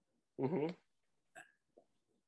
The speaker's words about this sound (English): Sorry, guys. I got the hiccups.